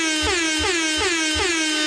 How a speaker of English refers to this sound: Wait, air horns.